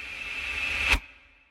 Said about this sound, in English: He wanted the sound of an arrow that went on over 15, 20, 30 seconds. So he asked me if I could do that. And I said, yeah, I know a way of doing that.